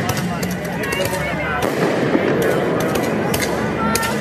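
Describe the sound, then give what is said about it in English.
Loud commercial-grade fireworks, shot by protesters into the Justice Center around 10:15 p.m. and breaking several windows, crack and pop in an irregular string of sharp bursts, some in quick clusters, over the dense roar of a shouting crowd. “By 10:15 p.m., the fireworks usage had grown more militant, and people were shooting dozens of commercial-grade fireworks straight into the Justice Center, breaking several windows.”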